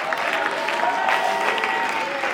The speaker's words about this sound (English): He's resurrection on Saturday before Sunday. Woo! Somebody clap your hands and just shout a little bit.